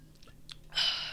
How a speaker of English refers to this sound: Hold on. I need to take a sippy sip of my Dr. Pepper.